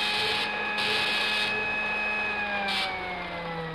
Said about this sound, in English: Now, I'll put on a spool of defectively insulated wire. Mm-hmm. There. Hey, what's that? Well, each time there's a break in the insulation, this buzzer sounds off.